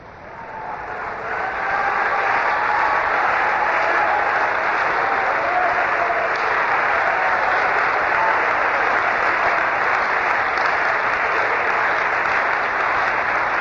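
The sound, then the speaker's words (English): A large crowd claps steadily, the applause swelling over the first couple of seconds into a dense, sustained roar of hands without any talking. “Go ahead and clap your hands again.”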